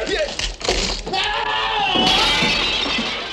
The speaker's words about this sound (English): He ends up falling down the stairs through some stained glass.